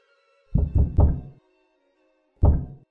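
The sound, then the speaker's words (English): Heavy pounding on a door after dark: three quick, loud knocks in a row, a short pause, then one more hard knock. Deep, thudding blows with no voices. “Stop hammering.”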